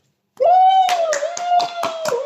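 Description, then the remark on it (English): Several sharp hand claps in a quick, slightly uneven run, loud, over a steady sustained whooping tone that starts just before the clapping. “We need a studio audience.”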